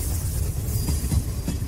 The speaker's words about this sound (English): Talking Lead Jackwagon Train. And Arlie Ermey, the gunny, is in charge of that. So, gunny, bring that train in.